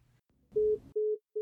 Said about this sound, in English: Richard hung up the phone.